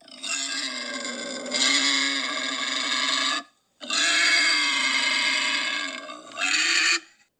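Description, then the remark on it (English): A person lets out two long, loud squealing screams, imitating a charging wild boar. The shrill, harsh cries are separated by a brief pause, and no one speaks. “So I'm sitting here as a wild boar, and I'm just going to, like, yell and scream just to try to, like, scare him, send some fear into anybody who's listening.”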